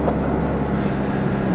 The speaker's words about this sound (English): Hopefully the background noise isn't too bad. I got the AC cranked. It's, let's see, it's 89 degrees, which is pretty warm for Labor Day, I would think.